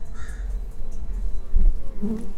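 A steady hum of many honeybees buzzing around their hives in a sunny apiary, bees entering and exiting the hives, some carrying yellow pollen; a continuous droning swarm with no voices, rising and falling slightly as bees fly past.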